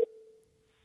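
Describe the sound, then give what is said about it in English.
A phone line sounds a single steady electronic tone that starts with a sharp click and holds at an even pitch, slowly fading, as someone calls a father's house. No one speaks. “Why don't I try calling him?”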